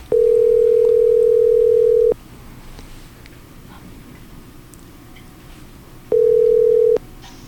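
A telephone tone sounds while a call is being placed: a steady, mid-pitched hum lasting about two seconds, a pause of roughly four seconds, then a second, shorter burst of the same tone.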